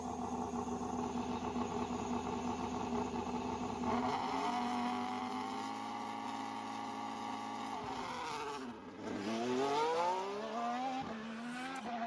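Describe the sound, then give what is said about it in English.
A loud car engine runs steadily, then its pitch drops and climbs again as it revs and pulls away, accelerating with a rising whine. No one speaks. “Or no, just have that wee bit for like the wee bit just before it Popper starts to go and then drives off just in between”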